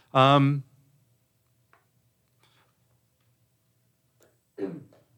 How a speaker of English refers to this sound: Excuse me, there, I had to clear my throat.